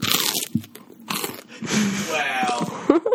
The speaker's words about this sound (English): Lovely toast crunch there from our producer